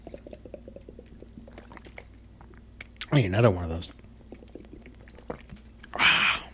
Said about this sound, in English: Chugging waters, ladies and gentlemen. Chugging waters because I don't want to drink.